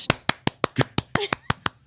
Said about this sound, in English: Who needs a crowd? We got one guy clapping wildly.